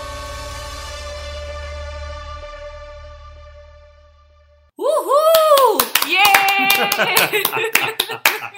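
A sustained ringing tone fades out, then loud cheering bursts in: rising and falling whoops with brisk, uneven clapping for the last few seconds.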